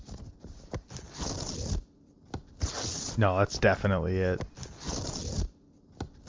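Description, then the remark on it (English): A sheet of paper being ripped in two long, rasping tears, fairly loud, followed by a short spoken remark and a bit of faint rustling. “Ripping a sheet of paper, no, you're right.”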